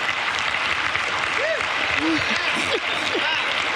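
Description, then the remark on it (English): Dense, steady audience applause fills the whole stretch, a continuous wash of many hands clapping at an even loudness, with a few rising and falling whoops or whistles cutting through. “Come on, give the old man a round of applause.”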